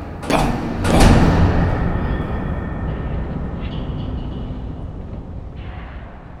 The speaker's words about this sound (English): The sound of the keys, the sound of the doors. Ese ruido de puertas. ¡Pam!